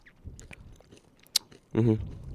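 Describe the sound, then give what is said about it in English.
Mouth sounds of someone sucking on and chewing a hard candy: soft wet clicks, one sharp crunch partway through, then a brief hummed vocal sound near the end. “I think I just crunched it. I'm sucking on it.”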